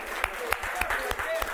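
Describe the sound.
A church audience clapping together to the Lord in a steady, even rhythm, the sharp unison claps landing about three times a second over a continuous murmur of voices and crowd noise.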